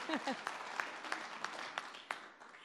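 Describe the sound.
An audience claps and cheers, a steady patter of applause with a few sharp individual claps and a brief high whoop of voices near the start.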